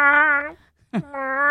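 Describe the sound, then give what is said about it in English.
Two loud, drawn-out meows from Hazel, a tiny female cat, the second starting with a rising yowl before settling into a long steady cry, with a brief pause between them and no talking. “She's a tiny little girl with a great big voice.”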